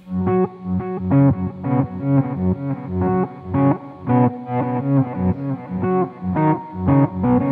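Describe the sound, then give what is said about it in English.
An effected electric guitar plays a choppy chordal riff with odd, pedal-shaped tones and a trailing delay, steady rhythmic strums sounding fairly loud with no voices. “Yeah, all those weird little tones that are just Easter eggs. And you can, you know, throw a little delay in it.”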